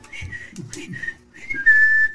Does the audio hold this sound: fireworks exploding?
no